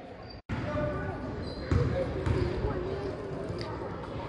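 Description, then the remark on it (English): On a second free throw, a basketball falls short and clanks off the front of the rim with a sharp hit, followed by a second thud, amid steady gym crowd noise and indistinct voices. “And short. Hits the front of the rim, rebounded by Rogue River”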